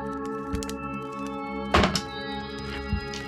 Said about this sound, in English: Metal dice go clang.